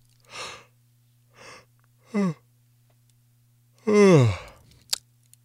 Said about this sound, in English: In fact, right now I'm probably causing many of you to feel the need to yawn. Did you know that it even works with animals?